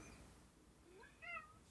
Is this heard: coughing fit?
no